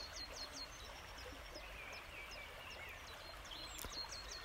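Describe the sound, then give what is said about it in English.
A dawn chorus of many small birds chirping and trilling continuously, set against the steady rushing hiss of a stream. Fairly quiet overall, with no talking. “I'll stop again in a minute, but I'll just leave this recording for a moment to give you a flavour of the background.”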